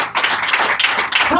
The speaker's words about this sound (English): Give me my hand clap if you want something to do.